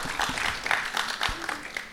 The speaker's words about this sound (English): Okay, some applause.